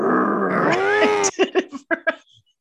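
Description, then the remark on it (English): A person imitates a dog's growl: a loud, sustained throaty snarl that rises in pitch for about a second, then breaks into five or six short, rhythmic huffs that fade out. “Why are you growling like a dog?”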